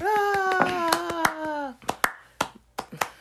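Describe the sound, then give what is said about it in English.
A short applause sound effect: scattered, uneven hand claps, joined for the first half by a sustained, steady-pitched cheering voice, then a few sharper claps trailing off alone. “I need my applause joint.”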